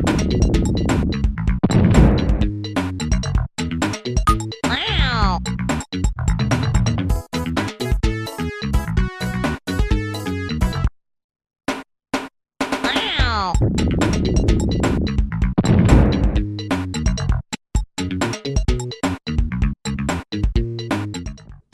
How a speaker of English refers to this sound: This is Socks the Cat Rocks the Hill, a game produced back in 1993 based on Bill and Hillary Clinton's cat from the White House, Socks.